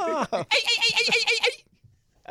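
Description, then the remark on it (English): A voice imitates a dolphin with a rapid, high-pitched squeaky chatter lasting about a second, done as the sound after a mock 'Touchdown, Dolphins' call for Dana Hills. It follows a short vocal lead-in and cuts off abruptly into near silence. “That's not a great dolphin.”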